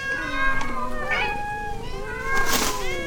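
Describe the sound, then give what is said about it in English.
Several look-alike cats, all resembling a cat named Eloise, meow at once, their drawn-out, overlapping cries rising and falling in a continuous chorus, fairly loud, with a sharper wail near the end. “These cats all look like Eloise.”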